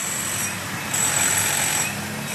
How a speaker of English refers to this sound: Like this construction site, 90 decibels.